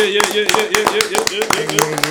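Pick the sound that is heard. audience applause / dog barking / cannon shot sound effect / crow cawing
audience applause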